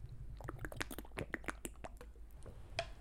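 Quiet sipping and swallowing of Essentia bottled water: a quick irregular run of wet mouth clicks and gulps over faint background hum, with no talking.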